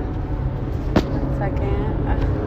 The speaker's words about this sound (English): This is just gonna be me driving in the car.